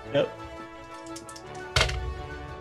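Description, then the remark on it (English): Two dice clatter on a table: a short knock, a few faint ticks of tumbling, then a louder sharp rattle as they land and settle showing a five and a four, over a low background hum. “And roll it. And then I roll.”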